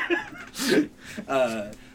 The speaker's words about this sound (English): In fact, they warn you about it with sound design, because you can hear the, labored breathing of Lisa through your controller speaker, because fuck you if you thought you were safe in your real world with your plastic controller.